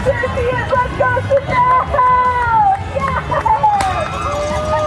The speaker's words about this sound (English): I think the best part, it's when your legs can't carry you anymore, and then the sound of the crowd carries you. It's the familiar faces along the route that catch my breath. Yes! Oh, God, yes!